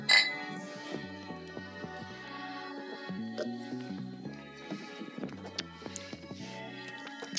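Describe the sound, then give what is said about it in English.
A sharp clink of glass beer bottles tapped together in a toast right at the start, ringing briefly before other clinks and tonal rattling continue at a moderate level. “Cheers, man. Cheers.”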